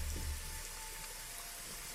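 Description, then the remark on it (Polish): Steady rain hisses evenly throughout, a dense wash of falling drops, with a brief low rumble at the very start and no voices. “Próbuję przekrzyczeć ten deszcz.”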